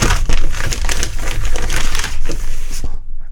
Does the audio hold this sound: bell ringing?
no